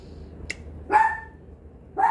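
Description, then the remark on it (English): The speaker's own dog barks twice, a sharp bark followed about a second later by another, moderately loud against a low background hum, with no talking. “my dog is being so disrespectful right now.”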